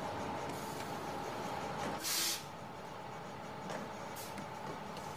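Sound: boarding a bus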